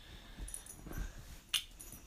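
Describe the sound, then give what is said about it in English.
A puppy that has just come into the room whimpers softly in short, thin high-pitched whines, with a brief sharp snuffle or rustle near the end; no one speaks. “sorry, puppy just joined into the room.”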